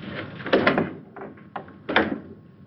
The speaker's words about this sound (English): And he closes the door.